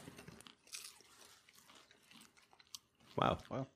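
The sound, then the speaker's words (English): Crunchy bites of a fresh batch of chicken and waffles, followed by soft, irregular chewing, with a couple of louder crackling crunches near the end and faint mouth noises in between. “But yeah, we're going to try this chicken and waffles on air.”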